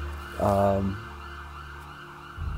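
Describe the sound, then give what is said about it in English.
A brief, loud ambulance siren blast lasting about half a second, then fading into a steady low hum that continues to the end, with no one talking. “The ambulance and everything”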